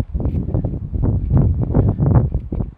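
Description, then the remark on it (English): Loud, blustery wind in a park surrounded by trees buffets the microphone in continuous low rumbling gusts, surging and easing over a few seconds with no clear voices. “Christ, it's windy as hell. It's so windy. I'll try to guard the microphone.”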